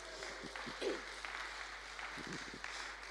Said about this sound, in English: But Hannah Peace, let's give her a round of applause anyway.